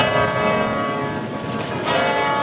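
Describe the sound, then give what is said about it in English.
Church bells ring out from the bell tower of the Romanesque cathedral in Cremona, Italy, their overlapping tones blending into a steady, resonant wash that sustains loudly throughout, with no voices present. “Cremona is famous for its Romanesque cathedral, Italy's highest bell tower, and its ancient violins.”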